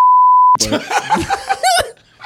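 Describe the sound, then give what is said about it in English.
A single flat, steady censor bleep tone rings for about half a second, then cuts off abruptly as loud laughter and chattering voices take over. “It'll just be beep.”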